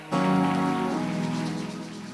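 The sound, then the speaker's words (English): An audience at a Warfare Wednesday church service breaks into applause for the preacher, a dense, steady patter of many hands clapping at once, holding its loudness throughout with a sustained musical tone humming underneath. “If you want to clap for me.”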